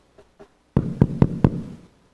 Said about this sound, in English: Knock on the door.